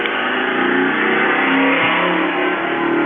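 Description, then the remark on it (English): A car engine revs hard and accelerates, a loud, steady roar with rising harmonic tones that fills the whole stretch without pause, unbroken, with no voices. “You're going slower. Beat it up like that car.”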